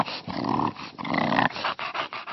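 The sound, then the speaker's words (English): A bulldog snorts and grunts: two longer raspy, wheezing breaths followed by a run of shorter snuffling bursts, loud and with no one talking. “I like all the funny sounds that they make and the funny look they have.”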